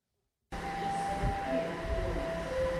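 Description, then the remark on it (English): A train rumbles steadily after a brief silence, with a continuous low mechanical roar and faint high tonal whines like wheels or motors running along the rails. “You have reached the end of the line. Please exit the train cars to your right.”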